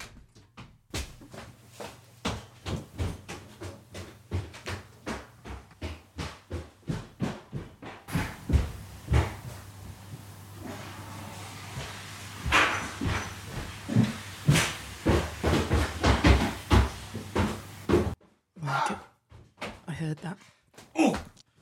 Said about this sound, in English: Well, two things. I heard the flush, so well done.